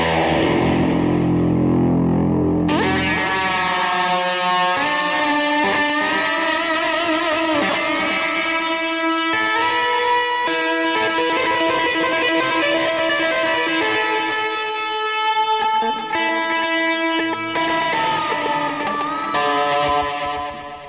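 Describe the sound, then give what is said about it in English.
A loud, heavily distorted electric guitar rings out in thick sustained chords and notes, shifting pitch every few seconds and playing continuously without any voices. “Oh, there's a distortion.”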